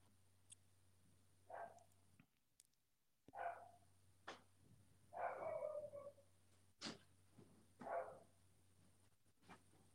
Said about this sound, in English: He's probably going to keep barking, so we have to.